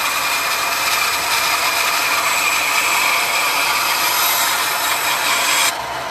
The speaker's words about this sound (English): It's not too bad, but it might start squealing. Not squealing, all right. So there's the bandsaw on the go, and he's away now.